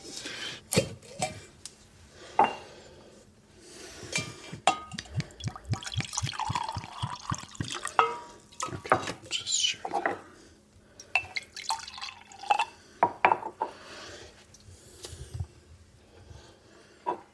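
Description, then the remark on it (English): Coffee mead trickles and drips into a cup, with irregular splashes and a steadier pouring stretch in the middle, plus a few light clinks and handling noises. “Well, let's take out the cup. We'll try the coffee mead.”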